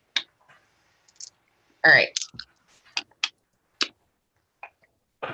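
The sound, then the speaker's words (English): Sharp, irregular clacks and clicks scatter across a few seconds as dice are rolled for stealth and agility in a tabletop game, tumbling and settling on a hard surface, with a brief burst of voice partway through. “You can add another dice to it because this grass is barely taller than you.”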